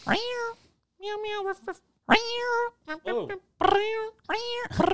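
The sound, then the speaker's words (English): A phone ringtone made of cat meows: about six loud, drawn-out meows in quick succession, some rising and falling in pitch, with short gaps between them. “You have a ring phone cat.”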